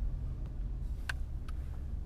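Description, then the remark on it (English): A parked car's engine idles with a steady low rumble, with a couple of brief higher clicks or chirps over it around the middle, before the car is turned off. No one speaks. “Let's turn off the car.”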